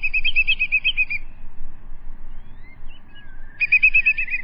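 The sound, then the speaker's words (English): A whimbrel, a shorebird, gives two bursts of its rapid, rippling whistled call. Each burst is a quick run of bright repeated notes, separated by a pause, over a low steady rumble of wind or surf. “It's the whimbrel.”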